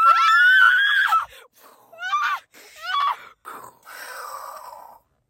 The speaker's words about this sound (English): Wait, guys. Wait! Ah! Start screaming.